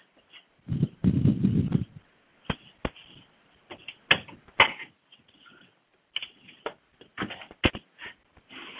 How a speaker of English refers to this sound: And pause just a moment here as I'm going to close the windows. There's a lot of noise happening.